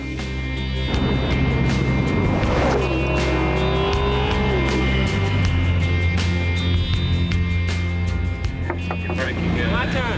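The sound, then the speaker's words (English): A road car's engine roars loudly as it is driven flat out on a track, its pitch climbing and dropping through the revs with a steady, continuous drone. “if you get the power in a certain rev band, I think it's about 6 to 7, it's got this whoong sound”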